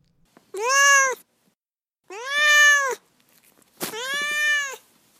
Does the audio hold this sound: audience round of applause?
no